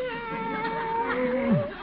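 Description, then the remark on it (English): A cat meows in a drawn-out, wavering cry that slides downward in pitch at the end, clear, with no talking over it. “The cat's back again.”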